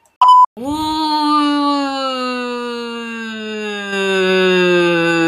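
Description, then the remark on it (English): A short high beep, then a loud siren holds a steady, buzzy droning wail for about five seconds, sagging slightly in pitch. No one speaks. “So, bouncing off of that, there's a siren in the background.”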